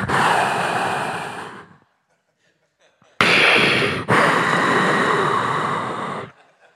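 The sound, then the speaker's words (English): A voice mimics a breathing machine with a long, airy hiss that fades, a brief pause, then two more loud, rushing breath-like bursts. “She goes, I took my breathing machine with me.”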